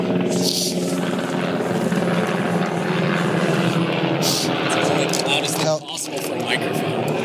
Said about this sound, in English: Helicopter going overhead, yeah.